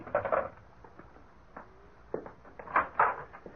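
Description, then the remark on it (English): A door being handled: a muffled rattle at the start, then a few scattered knocks and clunks, with a pair of sharper thuds near the end. No one speaks. “Darling, someone's at the door.”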